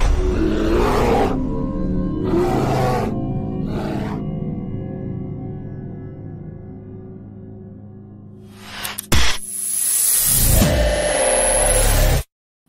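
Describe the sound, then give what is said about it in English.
A grizzly bear roars in deep, rumbling bursts that blend into a long, sustained growl, then a sharp snap is followed by a loud, harsh roaring blast before it cuts off. “it's a grizzly. Should we get out of here? No. We're gonna watch and listen.”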